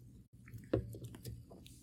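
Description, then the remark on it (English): A swig of sparkling water: wet gulping and swallowing sounds with a soft gurgle and faint crackles of bubbles, quiet and intimate, with no talking. “Like I said, game five is Tuesday night, so a swig of this bubbly water for Montreal and Vegas for putting on a hell of a series.”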